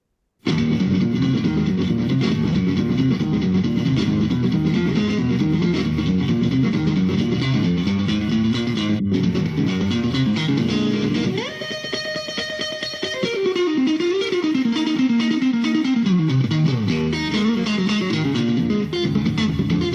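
A Texas blues electric guitar instrumental plays loud and continuously, with fast driving picked runs, a sustained bent note partway through, then more rapid licks. No one speaks.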